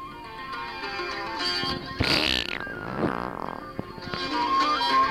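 A loud, raspy fart sound effect sputters for about a second and a half midway through, set against a steady tonal backdrop that resembles music, in a radio comedy bit featuring the character Leo the Farting Leprechaun.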